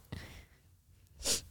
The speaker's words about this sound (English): Sorry, that was a foul sneeze.